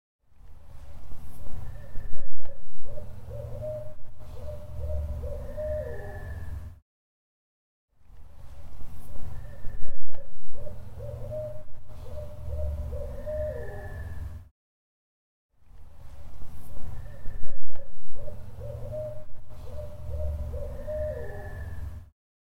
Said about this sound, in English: Yeah, we had an owl from a distance, and then we had one that was coming up mm-hmm. from down the hill. And he was really sounding off, and it sounded like he was getting closer as he was going.